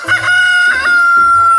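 A loud chicken clucks in a quick couple of bursts, a strained, tonal squawk that runs straight through with no talking.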